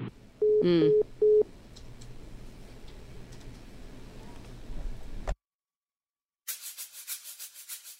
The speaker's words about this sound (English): The prison phone line cut out. Our 15 minutes was up.